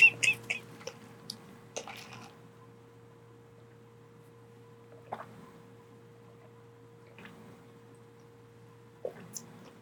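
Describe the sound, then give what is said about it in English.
Quiet sipping of jasmine milk tea: a quick cluster of soft slurps and wet clicks at first, then a few isolated sips spaced out over a faint steady hum, with no talking. “I mean, let's just go take a sip.”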